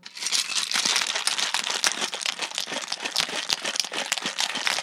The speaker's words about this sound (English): In this cocktail are several ingredients. There are cloves, orange juice, lime, goji berry liqueur, vodka, and bitters. So we're dumping all of the ingredients into the shaker, and you shake it with ice. Here goes.